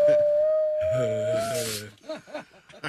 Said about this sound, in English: Oh, it says dog imitates siren. Oh. I thought it would just be the dog, but... Doggy make funny sound.